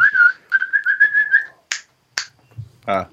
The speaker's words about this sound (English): I was whistling to my dog because he's tearing something up. Oh, yeah. Because he wants some attention.